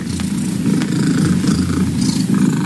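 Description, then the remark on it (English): A cat holding the Guinness World Record for the loudest purr purrs very loudly and steadily, a deep continuous rumble with a throbbing, motor-like texture that never lets up, with no voices over it. “All right, this isn't about how cats purr, but this, according to the Guinness World Records, is a cat with the loudest purr.”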